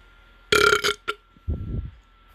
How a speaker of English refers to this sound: All right, I'm thinking like two more burps. Then I'll just pick one.